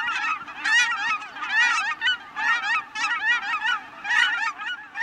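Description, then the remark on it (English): A flock of Aleutian cackling geese honks continuously, many high, yelping calls overlapping in a dense, restless chorus that stays fairly loud throughout, with no voices. “Thanks to this habitat conservation, there are now more than 120,000 Aleutian cackling geese making the biannual journey between Alaska and the Gulf of Mexico.”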